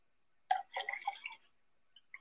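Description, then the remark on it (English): A brief, quiet pour of tea into a cup: about a second of bubbling, splashy trickling that starts abruptly and cuts off, followed by a faint clink. “I'm about to pour myself some tea.”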